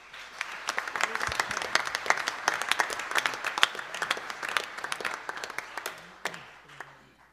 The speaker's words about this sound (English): Can we give another round of applause for these amazing guys? Wow. Wow.